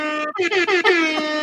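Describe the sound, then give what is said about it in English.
A loud, brassy hip hop air horn blares in a quick series of stuttering, piercing blasts, with no talking over it. “Let me get a hip hop air horn for DNA.”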